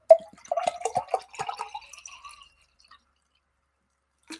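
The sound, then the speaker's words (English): Water being poured to drink, outdoors in humid weather: a quick run of gurgling, splashy glugs for a couple of seconds before it trails off into near silence, with no talking. “All right, let me make sure I pour some more water.”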